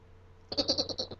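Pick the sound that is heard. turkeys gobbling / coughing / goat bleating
goat bleating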